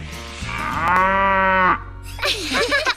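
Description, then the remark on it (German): A voice imitates a calf's moo, saying "Muh, muh" in German: one long drawn-out lowing call held for over a second, loud, followed by a brief stretch of other vocal sounds. “Und ich bin die Babykuh. Muh, muh.”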